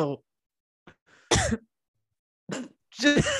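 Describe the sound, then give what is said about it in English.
A few abrupt bursts of coughing and throat clearing from a person who is sick, separated by short silences, with some brief voiced sounds mixed in near the end. “just the cough and respond.”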